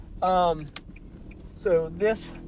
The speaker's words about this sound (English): And if you listen to the last episode, you'll remember. You know, you'll recognize this sound that's in the background, because I am recording in the car this first bit.